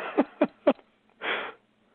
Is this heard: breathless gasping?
yes